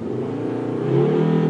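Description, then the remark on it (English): The engine of a stuck car in Ireland revs steadily as the driver tries to drive it forward, its pitch climbing slightly as the throttle is pressed, a strained, continuous drone with no speech over it. “Okay, the car will not go forward.”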